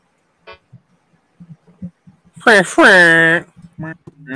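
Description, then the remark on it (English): Two loud, brassy honks from a vehicle horn, a short blast followed by a longer one with a slight wavering pitch, surrounded by soft murmuring voices. “Honk if you hear me.”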